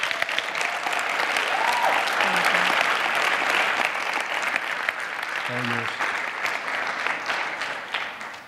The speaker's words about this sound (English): And would you just receive her with just applause, because she's amazing.